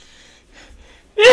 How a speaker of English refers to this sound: I'm trying not to sneeze in your drinks. I have my hands over them. You can sneeze in your own drinks, though.